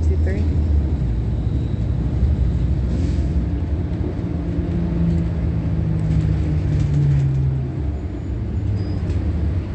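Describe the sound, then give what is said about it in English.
A large rental truck rumbles by as it crosses the path, its deep engine drone rising and falling in pitch over a constant wash of road noise. “truck rental crossing path.”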